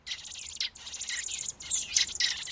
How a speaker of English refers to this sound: I feed them, and then before I can walk inside to cool off, they're hungry again. These are two robins, juvenile robins, not quite ready.